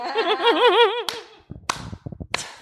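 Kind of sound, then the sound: human body sound, slow clap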